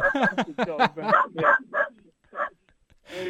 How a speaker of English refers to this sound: I'm sorry, man. As we are interrupted by the dog, give the dog a shout out. What's its name? His name's Tommy. Oh, well, shouts to Tommy. Yeah, I'll sort him out. Sorry, it's going crazy.